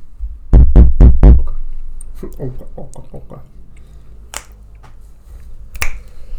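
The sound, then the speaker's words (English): Someone taps a microphone four times in quick, even succession, giving loud, boomy thumps, followed by quieter voices and a couple of sharp clicks. “Tap your microphone”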